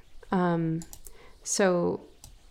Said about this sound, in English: Sorry, I have a new my one monitor isn't working, and so I like can't see. So sorry for the mouse clicks.